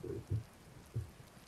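Steady, soft rain hisses throughout, with two brief low rumbles of thunder rolling beneath it, one near the start and another about a second later.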